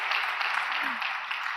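An audience applauds, a steady, dense wash of many hands clapping that holds at an even loudness for the whole short stretch without pausing.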